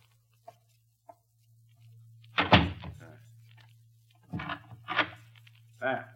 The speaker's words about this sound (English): It's the wind, madame. I will close the door.